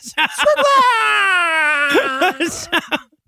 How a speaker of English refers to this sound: And we get the dumbest, we get a scream from the fetus, right? Mm-hmm. Like a snake demon screaming. They're like the Ghostbusters trap was getting it.